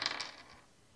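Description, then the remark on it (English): A quick clatter of many dice rolled for damage tumbling across a hard tabletop, a burst of bright rattling clicks that fades out within about half a second, fairly quiet with no voices. “That's a lot of damage, actually. That's a lot of dice to roll.”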